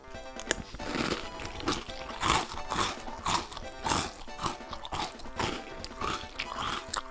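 Crunching of dry uncooked Nintendo Instant Rice being chewed straight from the bag: a steady run of brittle, gritty crunches in irregular bursts over several seconds, fairly loud and with no talking.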